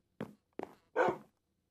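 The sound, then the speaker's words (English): A dog barks three times in quick succession, two short sharp yaps followed by a longer, louder bark, with nothing else heard around them. “What about the dog?”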